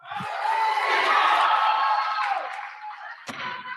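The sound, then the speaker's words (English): A crowd of voices yells and shouts together in a sustained, loud din, disrupting the proceedings, with sharp knocks or bangs cutting through near the start and end. “And unfortunately, I will not be able to determine who is yelling during the proceeding.”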